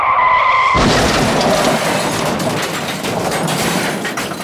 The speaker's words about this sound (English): Suddenly, there's a loud crash outside. They run to the window and see a bus has run into a telephone pole.